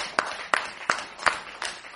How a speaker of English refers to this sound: So we're going to give a round of applause for the Rebbe.